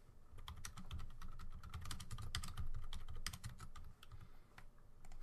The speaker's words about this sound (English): Caught red-handed again typing in the chat.